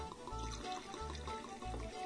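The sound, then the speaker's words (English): Black Tot Navy rum glugs steadily into a glass, with three pulsing low bursts as it pours, fairly loud with no talking. “Let me pour some.”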